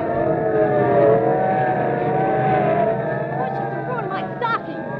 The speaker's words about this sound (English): Okay, listen, sirens. Yeah. Look, police cars, and are they rolling? And we better start hopping. They're not slowing down for anything. We better jump for the bushes.